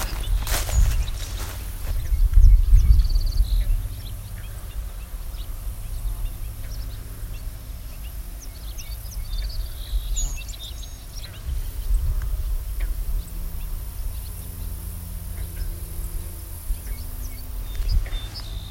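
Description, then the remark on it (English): Scattered, faint high-pitched short call notes from a large flock of at least 40 bobolinks come at irregular intervals, over a steady low outdoor rumble and occasional footsteps. “Okay, looking at a flock of bobolinks.”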